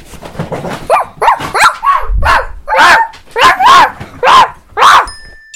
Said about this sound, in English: Dogs, dogs, dogs, who loves dogs? And like, there's a lot of dogs barking. And there's a lot of dogs barking. It's a great song.